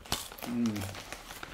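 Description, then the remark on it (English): Someone crunches salt and vinegar crisps: a handful of sharp, brittle crackles scattered over a second and a half, with a brief low hum of a voice in the middle. “So, can you hear the crunch?”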